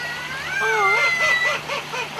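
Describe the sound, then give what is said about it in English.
A talking crow named Joe, hand-reared from a chick, imitates a human voice saying hello, producing a couple of seconds of high, warbling, bending tones that vaguely resemble a spoken greeting, heard alone over a faint steady hum. “You ever heard a talking crow? Here it is.”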